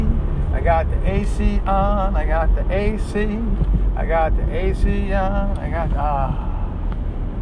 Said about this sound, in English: I got the AC on. Making it so cool and happy inside the car as I'm driving up Havemeyer. Up the hill, yellow light, made it through.